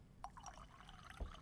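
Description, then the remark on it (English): A short burst of liquid splashing and gurgling as a drink is poured into a glass, fairly quiet, with a soft clink near the end and no talking. “That's a strong pour”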